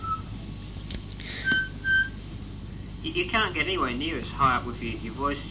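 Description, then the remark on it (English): Someone whistles high, clear notes: a few short separate tones, then a run of quick warbling slides up and down, fairly loud against a faint low hum. “You can't get anywhere near as high up with your voice as you can whistling.”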